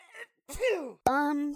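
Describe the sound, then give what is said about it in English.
A single drawn-out sneeze: a quick breathy intake, a voiced rising-then-falling "ah," then a sharp explosive burst trailing into a sustained, steady vocal tone, fairly loud with no talking. “Did you hear someone sneeze?”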